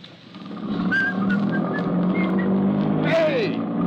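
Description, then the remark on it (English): A car engine rumbles to life and keeps running at a steady, fairly loud level as the car is driven away, with a rising whistle-like whine near the end and faint voices in the background. “Where are you going? Come back here. Come back with that car.”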